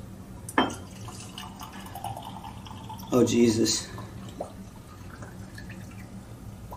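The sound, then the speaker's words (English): A short splash of liquor poured into a glass as a two-finger pour, lasting under a second, with a clink just before it and brief talking. “Kind of hard to get a two-finger pour in this glass, but we're going to try it.”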